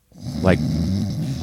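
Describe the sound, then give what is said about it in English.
A person imitates a snore with one long, throaty, rattling rasp lasting over a second. It is fairly loud, with a brief voiced rise partway through. “Wait, I can actually talk and make the snore sound at the same time.”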